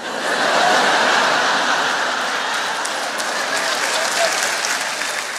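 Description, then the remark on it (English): Steady applause from an audience, a dense wash of many hands clapping at an even loudness throughout, with no voices or laughter over it. “There was no laughter. There was only clapping.”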